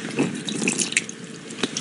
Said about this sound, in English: The tap is running. Yeah. And it is full. The tub was not previously full of water.